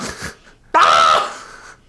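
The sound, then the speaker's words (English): A person imitates the crows that woke them above their tent while camping, with one loud, harsh, raspy "caw" that starts abruptly and trails off, preceded by a couple of soft, breathy sounds. “I woke up to crows going...”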